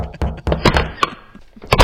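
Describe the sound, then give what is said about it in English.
Knocking on a wooden door: a handful of loud, hollow thuds in uneven bursts, with a short pause before a final quick pair. No voices are heard. “You knock on the door, and a pretty girl answers”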